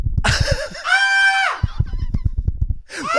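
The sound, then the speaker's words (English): A voice imitates excited screaming: a long, loud, high-pitched shriek held for about a second, broken by quick breathy gasps, then another rising squeal at the end. “So I'm screaming. I'm going like this.”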